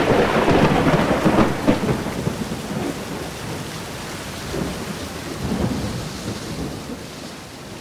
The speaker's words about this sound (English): Fortunately, they actually arrived at Jefferson's house just before the skies opened up and it poured.